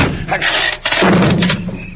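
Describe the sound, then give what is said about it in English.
A door being broken in: a loud burst of cracking and banging, a brief lull, then a heavy crash with a low rumble as it gives way. “The door caved in.”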